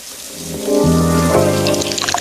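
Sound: shower water running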